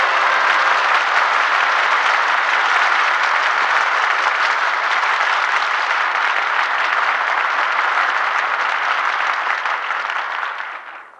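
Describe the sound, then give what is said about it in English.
A theater audience bursts into sustained, loud applause as the curtain falls on the play Miss Bishop, starring Martha Scott and Bill Gargan, a dense steady roar of many hands clapping with cheering mixed in, holding strong for about ten seconds before tapering off at the end. “Curtain falls on cheers for Miss Bishop.”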